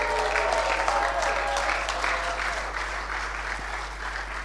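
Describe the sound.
An audience claps steadily, dense overlapping applause sustained at an even, fairly loud level throughout, with a faint murmur of voices underneath.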